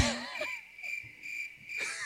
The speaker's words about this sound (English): Y'all can read crickets. I step on crickets.